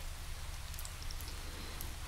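Steady rainfall hisses continuously, with a dense, even wash of noise and a low rumbling undertone, broken by scattered brighter drips and patters. No voices are present.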